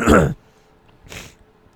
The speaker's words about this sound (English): Sorry, I was just coughing up my lungs for a second.